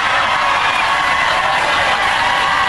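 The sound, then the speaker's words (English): A studio audience cheers and whoops loudly in a dense, continuous roar of voices that holds steady for a few seconds without letting up. “There's a lot of cheering.”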